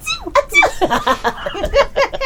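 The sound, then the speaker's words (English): A voice imitates a tiny, squeaky kitten-like orc sneeze, high-pitched and brief, followed by a run of quick, breathy giggles and chuckles. “It's cute little orc sneeze.”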